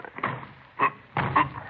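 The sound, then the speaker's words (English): Men forcing a locked door: three heavy, irregular thuds and rattles as it is shoved against its frame, fairly loud, with no voices. “Is there another key to this door? No. Well, give me a hand, Frank. We'll try to force it.”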